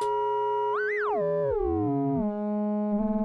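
Two pure sine waves modulate each other: one steady hum while another sweeps up then glides down, sidebands sliding and merging before settling into a buzzy low drone. No voices.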